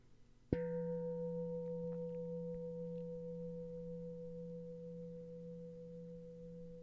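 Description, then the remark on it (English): A single meditation bell is struck once, its low, steady hum ringing on with a few higher overtones that quickly soften, the tone slowly fading. No voices are heard. “Keep noticing the bell drifting off.”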